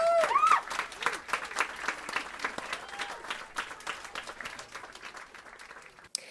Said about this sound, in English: and you guys deserve applause for that. You deserve applause for that.